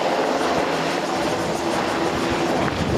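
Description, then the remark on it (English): Two Apache and four Black Hawk helicopters flying in the airspace of Taoyuan International Airport, Taiwan, during a military drill: a loud, steady engine roar with a broad rushing hiss and a faint humming drone underneath, continuous throughout with no voices. “Here in the controlled airspace of Taoyuan International Airport, two Apaches and four Black Hawk helicopters suddenly emerge.”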